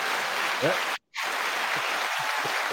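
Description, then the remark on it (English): Steady, dense applause from a crowd, a continuous hiss of many hands clapping that cuts out abruptly for a split second before resuming at the same level, with faint voices mixed in. “You didn't realize you were like applause and all kinds of other shit.”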